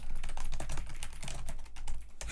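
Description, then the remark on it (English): Rapid, irregular clatter of keys on computer keyboards as two people type, fairly loud, with a steady low hum underneath and no voices. “We're both just typing.”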